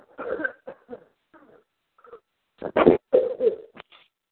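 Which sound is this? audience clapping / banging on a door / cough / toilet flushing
cough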